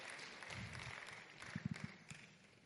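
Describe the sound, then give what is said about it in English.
Scattered applause from a crowd, fairly quiet, with a few louder, sharper claps standing out near the end amid the steady patter. “Clap now. Clap, clap, clap.”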